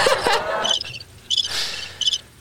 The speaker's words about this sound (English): I don't know how to turn the crickets off.